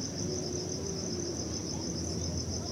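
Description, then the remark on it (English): Night insects sing in a steady, high-pitched trill that pulses rapidly without pause, layered over a soft low rumble of forest ambience. No voices are heard. “But the owls and the insects were the wind and the leaves, and there was just lots of singing.”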